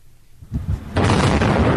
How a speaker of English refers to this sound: In three controlled explosions, a former coal-fired power station in Germany has been partially destroyed.